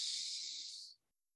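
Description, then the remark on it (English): A single steady nasal inhale during a frequency-breathing breathwork exercise, pure nasal breathing: a soft airy hiss lasting just under a second that cuts off abruptly, followed by quiet. No talking. “So now we can dial it down to a physical aspect where we can do something like frequency breathing, where we take a regular inhale, pure nasal breathing, and a five-part exhale.”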